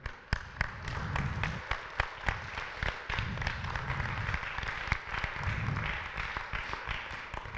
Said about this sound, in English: I got to see 21 students get baptized. You don't have to, you can clap for that too, that's awesome.